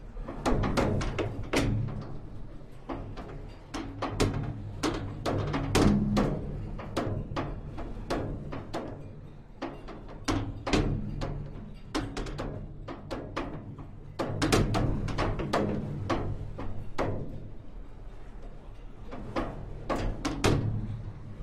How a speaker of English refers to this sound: Inside a container, this is just the banging of the plastic door back and forth, sheltered from the wind, and just the banging.